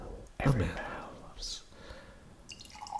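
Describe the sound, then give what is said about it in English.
An orange-colored sour beer from Wolf of the Willows pours from a can into a glass: a sudden splashy gush, then a steady gurgling stream that rises in pitch as the glass fills, with faint murmured talk. “And pouring. It's an orange color.”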